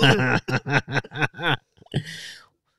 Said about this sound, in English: The worst part of coughing, like choking, is like your eyes watering and like forever.